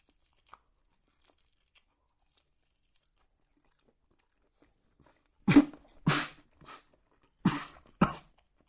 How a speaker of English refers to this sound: I'm going to have a proper bite. I'm going to try and eat the whole chicken wing, apart from the bone, obviously.